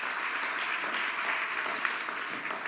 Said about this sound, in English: If you believe that, put your hands together and clap to Him.